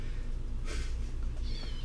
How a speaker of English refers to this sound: Oh, yeah, it should be meowing because I'm squeezing him. To get it out of him. I'm just kidding.